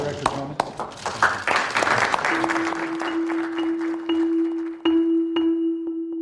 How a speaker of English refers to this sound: Then there's this awkward applause.